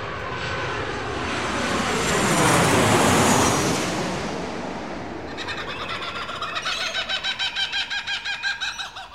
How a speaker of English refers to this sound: Oh, those birds are loud. Can I shoot it? No, don't. They're native birds, you monster.